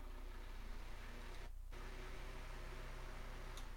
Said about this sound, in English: I'm not gonna do it while we're recording, because I'll have to turn on my fan and it'll be wind tunnel mode. Yeah, like for those of you listening, this is what it sounds like.